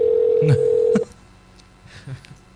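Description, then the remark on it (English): A steady, loud ringback tone from an outgoing phone call sounds once for about a second, then cuts off, leaving quiet line noise and faint, brief murmurs of voices. “I think they're going to answer. No, they're not. I want a voicemail.”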